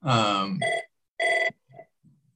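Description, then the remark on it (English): A telephone rings with a short electronic ringtone: a sustained tone, then two clipped bursts and a couple of fainter trailing notes, with no talking. “We're getting a phone call.”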